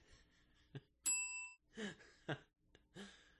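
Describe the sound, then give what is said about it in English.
A single bright bell ding rings out sharply and fades within half a second, surrounded by short bursts of laughter and vocal sounds. “It's like the Comic Sans of phone edges. Ding.”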